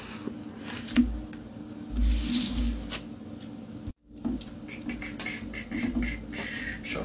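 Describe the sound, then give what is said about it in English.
Playing cards being shuffled: two bursts of papery riffling and crackling, split by a brief silent pause. No voices are heard. “Do the truffle shuffle. Pick card, any card.”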